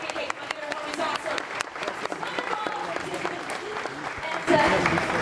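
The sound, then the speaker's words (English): An audience applauds steadily, a dense crackle of many hands clapping at once that holds for several seconds and swells a little louder near the end, with some voices mixed in. “Ladies and gentlemen, big round of applause for Mr.”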